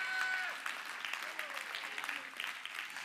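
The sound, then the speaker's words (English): An audience claps in praise to the Lord, a dense, steady patter of many hands at moderate loudness, with a brief sustained tonal voice or note at the start and faint vocal sounds mixed in. “If you are, give the Lord a great big hand clap of praise.”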